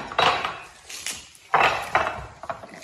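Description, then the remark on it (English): Four crisp romaine (cos) lettuce leaves drop into a dish in two main bursts, each a rustling slap against the bowl, with a few lighter clinks and taps in between. “How many leaves do you reckon? Four. Okay, so here we go. These go in here.”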